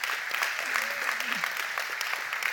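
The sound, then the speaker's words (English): A steady round of applause from a church audience for the worship planners and praise team: dense, continuous clapping that holds an even level throughout, with a faint voice briefly rising beneath it. “We give you a round of applause, seriously.”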